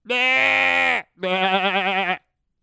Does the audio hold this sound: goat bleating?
yes